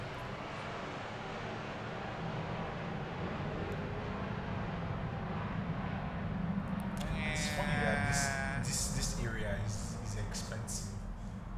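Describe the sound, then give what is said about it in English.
A steady, low roar of an airplane passing overhead fills the whole recording, with muffled voices and brief clattering sounds rising over it toward the end. “There's another plane, by the way.”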